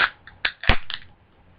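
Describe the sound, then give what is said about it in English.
A little turquoise drink can with cream highlights is cracked open: a few sharp metallic clicks from the tab, one loud pop, then a brief fizzing hiss that fades quickly. No one speaks. “I'm going to open this puppy up.”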